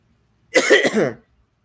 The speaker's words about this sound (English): And guys, I'm sorry if like my voice is like cutting out tonight and I'm like coughing like that. I've got something down my throat. I don't know what it is.